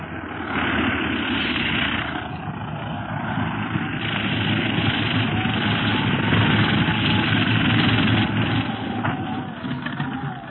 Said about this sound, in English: The plane is landing. We'd better step back.